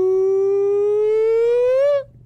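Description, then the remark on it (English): A single loud, steady siren tone from a small portable siren gadget, carried through hand luggage and kept in a pocket, holds for about two seconds with bright harmonics, rising slightly in pitch near the end before cutting off abruptly into a low hum. “I got the nonsense got siren through hand luggage.”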